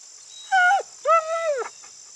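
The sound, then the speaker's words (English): A frightened dog named Max whimpers twice, two thin, high whines that bend down in pitch at the end, the second longer and wavering, with no talking and a faint steady hiss behind. “Sweet doggy, don't be scared. We won't hurt you.”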